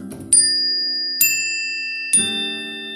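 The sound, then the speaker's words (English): Wind chimes near a patio are struck three times at an even, unhurried pace, each strike ringing out clear and bright with long, shimmering tones that overlap and linger. No one speaks. “And whenever I have a good thought, I just come in and I ring the chimes.”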